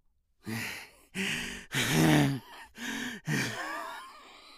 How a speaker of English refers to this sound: Its breathing is loud and difficult. It heaves and shudders with the will to live, chest rising and falling, bubbling between twisted lips of froth that courses down a cleft and lands upon the carpet.